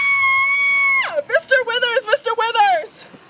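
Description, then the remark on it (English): A man lets out a shrill, sustained scream of fright for about a second, then it drops into a burst of frantic, choppy yelling, loud. “…, who had been a real chicken at first, was stepping up to the plate. Well, screaming at the plate.”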